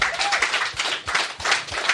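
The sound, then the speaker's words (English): An audience claps lightly and politely, a soft, steady patter of many hands with no cheering, holding an even, subdued level throughout. “Very mellow crowd. Lots of golf clapping going on. Very light clap.”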